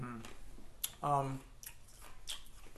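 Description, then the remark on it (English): Crisp, crunchy bites of ice chewed right up against the microphone, three or four sharp crunches spaced irregularly, with a short voiced murmur between them. “Let me chew ice to the mic.”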